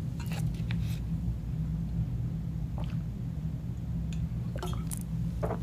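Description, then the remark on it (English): Someone sips water: a few short, soft wet slurps and a faint clink, spread over several seconds, with a steady low rumble humming underneath and no talking. “So let me take a sip of water while I wait for Kevin to ask me a question.”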